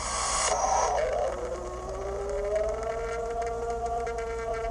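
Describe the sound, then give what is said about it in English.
A long, purported Bigfoot scream recorded at an apple orchard in a backyard: a harsh burst, then a sustained wailing cry that slowly rises in pitch, heard over a steady background hiss and low hum. “That's your standard bat moneymaker scream. That's from the apple orchard.”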